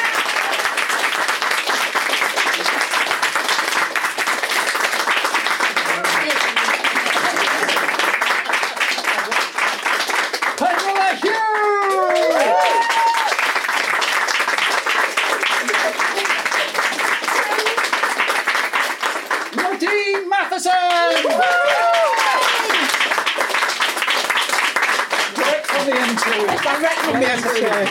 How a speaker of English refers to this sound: We've got some wonderful, wonderful authors here today. I want you all to give them a rapturous applause as they come on.